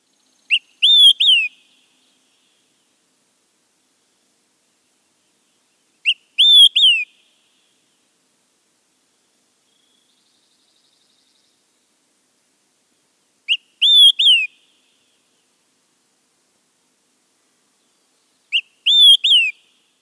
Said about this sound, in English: That song is the olive-sided flycatcher. The olive-sided flycatcher sings quick, three beers. It is a famous mnemonic with this distinctive whistled song.